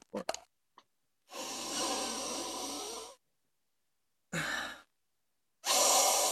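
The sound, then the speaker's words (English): Breathy sniffing to smell cannabis: one long drawn-in inhale followed by two shorter sharp sniffs, with brief quiet gaps between them and no talking. “I didn't need the snick and sniff.”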